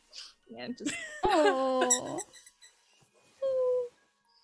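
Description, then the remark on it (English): A rubber squeaky dog toy squeezed twice: a long, wavering high-pitched squeal followed, after a short pause, by a shorter, steady squeak. “I don't have a squeaky toy on me, but I do.”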